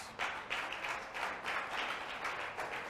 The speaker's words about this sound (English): Let somebody shout hallelujah. Hallelujah. Clap for Jesus.